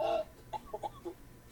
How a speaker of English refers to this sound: And this is her bird up there.